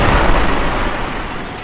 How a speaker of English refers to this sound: And pulls forth his cannon and, like, just starts hitting it with tools and clanging and banging. And a massive explosion rocks the top of the dark spire.